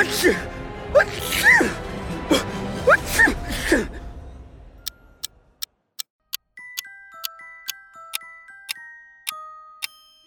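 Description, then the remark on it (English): A mummy sneezes several times loudly, with gasping breaths in quick succession, then a steady ticking like a clock, joined by faint tinkling chime notes. “Did that mummy just sneeze? Good lord, it sneezed.”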